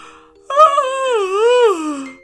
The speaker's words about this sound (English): Gregory woke up with a big yawn.